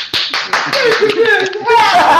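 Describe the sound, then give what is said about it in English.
An audience claps in a loud, dense burst of overlapping sharp hand claps, with voices cheering and calling out over the applause throughout. “Clap.”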